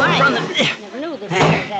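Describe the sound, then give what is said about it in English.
A heavy table scrapes and is set down in front of a door with dull thuds, as voices strain and grunt over the effort in a short, busy burst. “Move that table in front of the door, ….”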